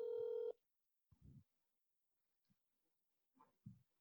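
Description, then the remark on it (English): A phone call rings through the speaker of a phone held up during a call: one loud, steady electronic tone for about half a second, then quiet broken by a few soft, low thumps and murmurs. “All right, I'm going to call him on the podcast.”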